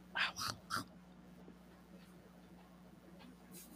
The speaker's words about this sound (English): She was about to bark.